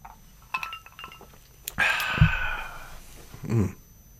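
Several light glass clinks and small taps as people toast, then a breathy sip of bourbon with a sharp exhale, followed a moment later by a soft, low murmur of reaction.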